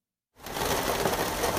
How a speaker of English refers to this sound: This scene plays out dozens of times this summer. The rain picks up.